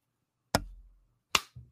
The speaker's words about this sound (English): I'm going to try and do it as loud as possible so that you can hear like me slapping myself in the face.